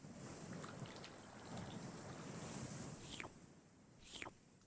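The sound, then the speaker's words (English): Steady seaside ambience with wind buffeting the microphone and a constant wash of waves, plus a couple of brief splashing swishes near the end; no voices. “We're right by the sea.”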